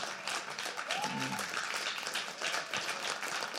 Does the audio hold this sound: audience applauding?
yes